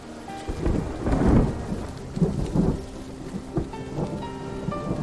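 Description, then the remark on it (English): Deep rolling thunder rumbles in heavy waves over a steady wash of rain, with several booming swells in the first few seconds before easing into a lighter patter of falling rain. “Sky's getting dark. Looks like we're in for quite a storm.”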